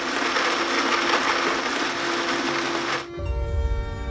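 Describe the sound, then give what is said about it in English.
A kitchen blender whirs loudly and steadily for about three seconds, then abruptly drops to a lower, rumbling grind with a steady hum as the motor changes pitch. “Activating blender.”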